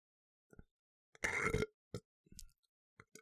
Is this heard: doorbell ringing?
no